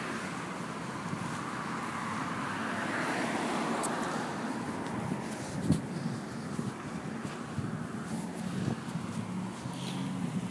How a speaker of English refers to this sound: Yes, now I'm noticing that there's a lot of. Traffic, so I'm not sure if I'll be entirely heard.